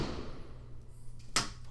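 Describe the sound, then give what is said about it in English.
Fireworks set off at a neighbor's go off outside with a single sharp, loud crack, preceded by a couple of faint pops, all over a steady low rumbling background hum. “Don't worry, everyone. It's not a drive-by. It's fireworks.”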